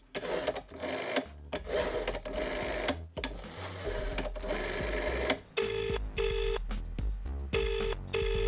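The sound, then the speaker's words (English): A telephone number is dialed to call Larry's Cash and Carry, a quick run of short, evenly spaced electronic tone beeps following a burst of clattering, mechanical noise. No one speaks. “Where's the phone?”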